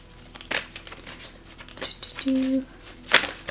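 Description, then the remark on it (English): Tarot cards being shuffled for a tarot reading, heard as a few short, crisp papery riffles and flicks spread out over a few seconds, with a brief low hum in between. “Shuffle the cards.”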